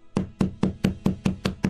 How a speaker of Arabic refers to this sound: طرق العميد الباب، بعد ثوان فتح رجل ليس له من الملابس إلا التبان